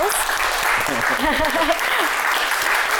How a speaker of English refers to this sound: applause.